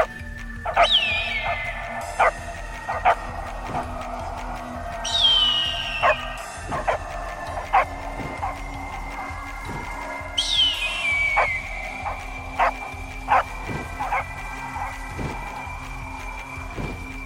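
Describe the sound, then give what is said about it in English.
Several dogs bark and yip repeatedly in short, sharp bursts, mixed with high whining cries that rise and fall three times over the stretch, with no talking. “Oh, good job, line dogs. Yes, good dogs.”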